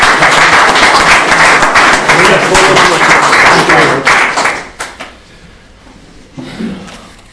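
A crowd applauds a speaker with dense, loud clapping for about four seconds, then the clapping thins out and fades, leaving a few scattered claps and murmuring voices.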